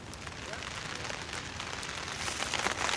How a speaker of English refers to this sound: Looks like the rain did not hold off. Rain is coming down. Nothing that some branches and some plastic can't solve, though.